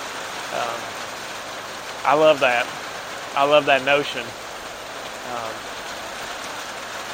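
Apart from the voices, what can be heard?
rain falling outside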